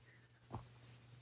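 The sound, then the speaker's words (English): Faint pen scratches on paper: a couple of short scribbling strokes over a low steady hum, with no voices. “Yeah, pen and paper.”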